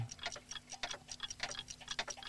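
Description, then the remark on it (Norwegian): Many wall clocks tick at once, their crisp clicks overlapping in a busy, uneven patter. The ticking is fairly quiet and steady, with a faint low hum underneath and no voices. “Det er jo alle klokkene på veggen.”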